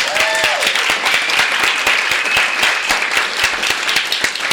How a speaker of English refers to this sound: I think this is the biggest crowd that we have ever had at Skylight Books for a Rattling Wall reading. So let's begin our warm-up of claps with more clapping.